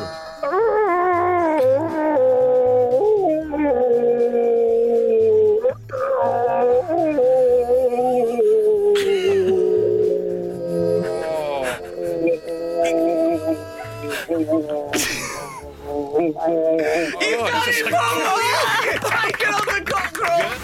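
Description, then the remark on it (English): A person imitates a rooster crowing in a cockerel-off contest, long, wavering, drawn-out cries, loud, repeated several times over a steady pulsing musical beat. “What about the world's first ever cockerel off? 3, 2, 1, it's time to take on the cockerel!”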